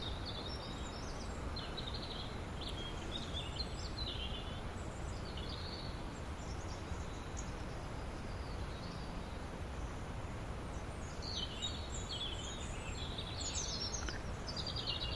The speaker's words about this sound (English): So far, I think we've got two or more robins. Quite a few robins, yeah. Singing to all each other. All over the top of each other.